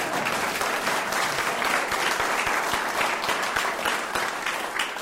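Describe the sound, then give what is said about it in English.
Sustained audience applause after a chord that falsely seemed to end a piece of music, a dense wash of many hands clapping at a steady loud level for about five seconds, with a few sharper individual claps standing out and no talking. “I just did that so we could all clap and feel like it was over.”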